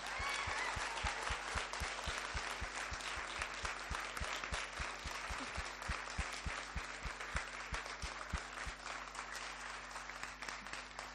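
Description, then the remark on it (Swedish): A crowd applauds steadily for about eleven seconds in a church during a service, a dense wash of many hands clapping at an even loudness with no voices rising above it, to thank two people for their work. “Jag tycker vi ger en applåd till dem.”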